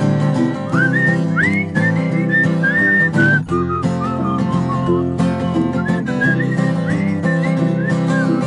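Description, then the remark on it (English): People whistle a lively tune together over steady musical accompaniment, the bright melody gliding up and down in short phrases for several seconds, loud, with no talking. “We'll whistle together, ready?”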